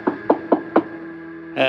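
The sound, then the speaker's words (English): Four firm knocks on a door in quick, slightly uneven rhythm, clear, followed by the start of a voice after a short pause. “Then there was a knock on the door.”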